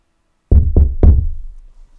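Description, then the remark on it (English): Three firm knocks on a wooden door in quick succession, fairly loud, each with a short resonant decay, the last one slightly stronger. No voices. “Listen, I'm standing at the door knocking.”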